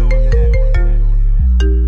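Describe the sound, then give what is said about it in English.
A phone ringtone for an incoming call from a private number plays a loud synthesized melody of several quick notes with a bright, buzzy tone, continuing steadily through the whole moment with no one speaking. “Who the fuck is this on my phone this time? Private number, probably a little bitch”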